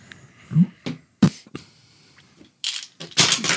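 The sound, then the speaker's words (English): Dice clatter and tumble across a hard tabletop in a few sharp bursts, ending in a longer rattling roll. No one speaks. “I didn't know what that was for a second. Oh my god, those dice are so pretty.”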